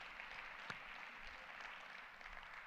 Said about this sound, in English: Can somebody put your hands together and give Jesus a hand clap of praise?